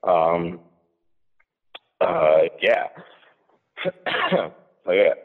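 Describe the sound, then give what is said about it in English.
Several harsh, loud coughs and throat-clearing bursts from someone who drank Coca-Cola too fast come in uneven clusters, separated by short silent pauses. “I cough because I drank my Coca-Cola really fast, not because I have Corona.”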